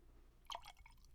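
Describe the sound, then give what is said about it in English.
A short, quiet splash of liquor being poured into a glass, a brief gurgling trickle lasting well under a second, with no talking. “And as I pour this glass, I hope you can.”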